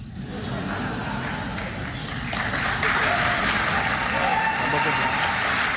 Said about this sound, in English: And the cheering.